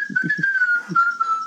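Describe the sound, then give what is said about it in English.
A person whistles one steady, sustained note that holds its pitch and wavers only slightly, clear, while a few soft low thumps pulse underneath near the start. “Can you that whistle?”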